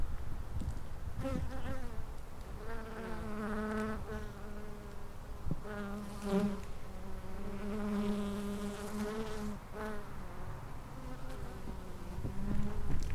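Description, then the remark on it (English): Several bees buzz in a steady, overlapping drone around a hummingbird feeder, trying to get the feeder juice; their wingbeat tones rise and fall as individual insects fly past. No voices, just continuous buzzing. “And I think if I'm careful enough, I can actually let you listen to the bees.”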